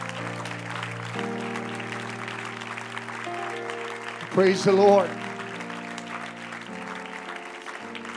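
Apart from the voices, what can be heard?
audience applause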